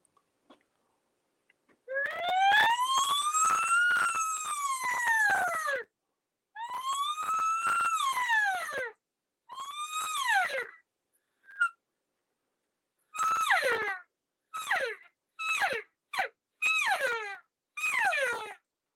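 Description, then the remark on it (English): An elk call blown alone: a siren of long, rising-and-falling whistled wails shortened with each repetition until they become quick, clipped cow calls, loud with brief gaps between. “So to turn that siren into a cow sound, you just start shortening it all up.”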